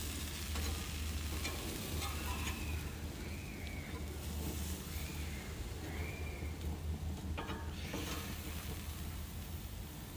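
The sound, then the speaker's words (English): Food sizzles steadily on an outdoor grill, a dense crackling hiss with scattered pops and snaps running the whole time over a low background hum. “Oh yeah, I'm outside, I'm grilling, so y'all gonna get some sizzling aesthetic.”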